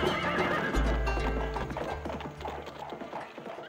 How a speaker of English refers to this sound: And then the horse came right back here.